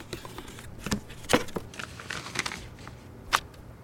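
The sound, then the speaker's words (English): Paper crinkles and rustles as it is handled, with a few sharp crackles scattered irregularly over a quiet, soft rustling background. No one speaks. “Oh my God, you weren't kidding. This is actual paper.”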